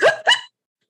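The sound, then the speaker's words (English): A voice imitates hiccups: two quick, sharp vocal hics in rapid succession, fairly loud, followed by silence. “I think they should spike the punch with like hiccup, like a hiccup.”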